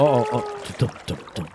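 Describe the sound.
Water splashes in a quick, steady rhythm like paddle strokes as a boat moves away down a river, moderately loud, after a brief tonal voice-like sound at the start.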